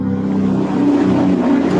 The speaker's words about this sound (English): Sorry about the truck.